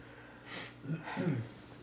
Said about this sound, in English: Bless you.